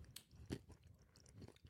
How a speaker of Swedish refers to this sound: Och där tugga på en choklad, en lakrits, biten är saltlakrits också.